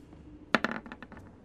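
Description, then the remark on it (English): Dice clatter onto a hard tabletop, a sharp first impact followed by a quick run of lighter, bouncing clicks that rattle and fade within a second, with no voices. “Come on, dice, don't do this to me.”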